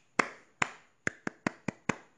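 Seven crisp hand claps with no talking, demonstrating a teacher's clapping method for teaching British English pronunciation: two spaced slowly, then a pause and five quicker ones in an even run, each sharp and bright.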